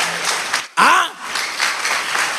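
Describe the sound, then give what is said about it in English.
An audience claps steadily in a dense, crackling wash that stops briefly for a moment. A short rising-and-falling vocal whoop cuts in before the clapping resumes at an even level. “If you are clapping, clap or the way you are behaving.”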